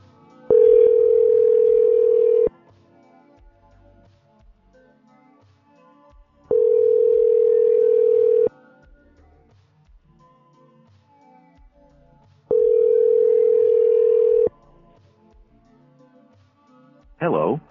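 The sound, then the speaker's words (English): A telephone ringback tone sounds three times, each steady two-second ring separated by about four seconds of quiet, heard down the line as an outgoing call waits to connect, with a brief click at the end. “Pick up the phone, honey baby.”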